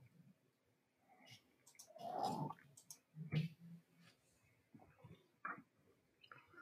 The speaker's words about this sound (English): I'm doing some very slow sip. The slow sip. Yeah. Slow sipping, sir.